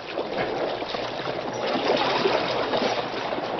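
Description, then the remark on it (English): Steady churning of water from a steamboat's big paddle wheels, a dense rushing wash with splashing texture as the wheels, with the engine reversed, whip the surface into white foam. It holds an even loudness throughout, with no voices. “The mighty paddle wheels whipped the water into white foam.”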